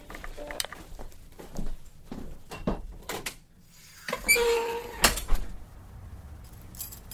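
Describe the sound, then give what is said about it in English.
Scattered knocks and handling clicks lead into a rumbling slide of a recording booth door that ends in a solid thud as it shuts, leaving silence. “And two, I didn't hear you because I had the door to the booth closed and you cannot hear anything outside of this door.”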